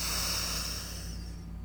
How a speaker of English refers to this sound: Take a big breath in through the nose.